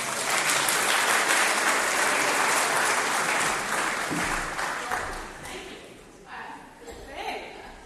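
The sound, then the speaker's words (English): A crowd breaks into loud, sustained applause, dense clapping filling the first few seconds before gradually thinning out and fading as scattered claps and a few voices remain. “A big round of applause.”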